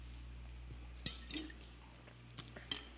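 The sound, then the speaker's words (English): Quiet sipping of water: a few small wet clicks and slurps spaced irregularly over a few seconds against a low steady hum, with no talking. “I also need to apologize that I'm getting over a cold, and so if I'm pausing to get a sip of water or I need to cough or something, please excuse me.”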